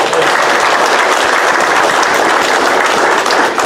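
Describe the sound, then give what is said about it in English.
A steady round of applause from a group, dense crackling claps sustained at an even loudness for several seconds with no talking over it. “Okay, so let's do a round of applause.”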